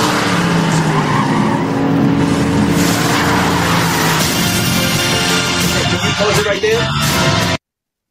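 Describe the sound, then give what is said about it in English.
Loud, sustained roar of Tesla cars in a movie scene, tires skidding and squealing, a dense chaotic rush of engine and road noise that continues for about seven seconds before cutting off abruptly. “So, you saw all those Teslas?”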